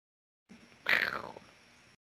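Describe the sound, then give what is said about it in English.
A single clear meow from a female cat, with a brief downward-sliding pitch lasting about half a second over a faint background hiss. “Meow. She didn't like it.”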